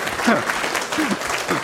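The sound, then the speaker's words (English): Steady audience applause for Keith Barry, a dense crackle of many hands clapping at an even loudness, with a voice talking briefly over it. “Keith Barry, give him a round of applause there.”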